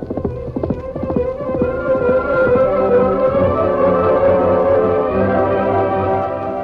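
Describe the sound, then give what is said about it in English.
Horse hooves clip-clop steadily as a rider spurs his horse along Post Trail from Canyon City to Snake City, a fast rhythmic run of hoofbeats that starts sharp and blends into a dense, continuous rumble, fairly loud, with no voices. “A few miles away, Bob Peters spurred his horse along Post Trail from Canyon City to Snake City.”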